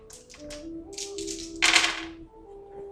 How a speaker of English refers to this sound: Well, health and nature are both five, so get fucked. So roll. Six dice.